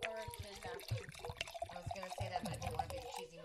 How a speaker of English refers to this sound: I love the sound of wine pouring. There's a couple of sounds in this world that are just always happy sounds. One is wine pouring.